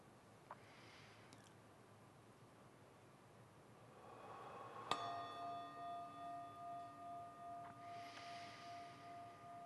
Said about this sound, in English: Let the sound of the chime be a signal for releasing. Not arousing or focusing or tightening up